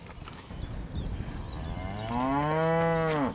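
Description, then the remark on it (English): A single cow from a herd lets out a long, loud moo, its deep harmonic call rising after a couple of seconds of low outdoor rumble and rustling. “There we go. Been waiting for one of those. The quietest herd of cows I've ever seen.”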